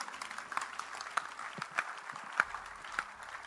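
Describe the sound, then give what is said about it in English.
An audience claps for the Lord Jesus during a sermon in a dense, steady patter of many hands, with a few sharper individual claps standing out above the continuous wash of applause. “Clap for the Lord Jesus, somebody.”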